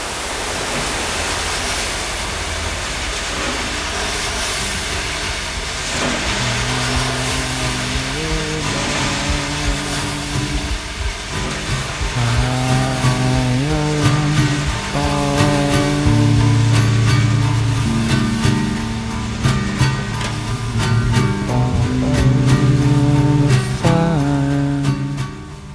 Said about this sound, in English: evolving into pure white noise, like just this gentle hiss, flat, perfect, neutral, blank hiss